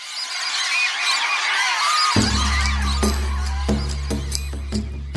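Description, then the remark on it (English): A flurry of birds takes flight in a dense, hissing rush of fluttering and chirps, the opening flourish of a theme tune. About two seconds in, a loud low drone cuts in beneath scattered sharp clicks. “Yes, the birds are taking flight.”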